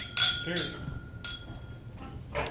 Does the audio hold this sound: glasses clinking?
yes